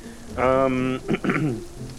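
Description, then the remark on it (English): Steady rain hisses softly throughout, a continuous wash of fine patter, while a voice briefly sounds over it in two short bursts. “So within the gate, where I presumably have a little bit more shelter against the rain.”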